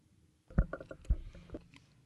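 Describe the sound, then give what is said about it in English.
Wet, clicky chewing right up against the microphone, a burst of mouth noises with two heavier thumps, starting after a brief silence and continuing unevenly for about a second and a half. “I mean, are you going to fucking chew into the microphone all night?”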